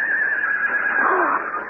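A young horse, the colt Juniper, tied to a tree, whinnies in one sustained, high, shrill call lasting well over a second, wavering slightly in pitch and fairly loud, with no talking over it.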